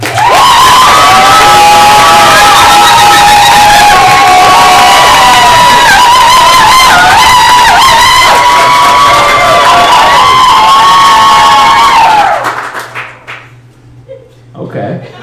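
A large audience bursts into loud, sustained cheering and applause with high-pitched shouts and whoops, continuing for about twelve seconds before abruptly cutting off into near silence.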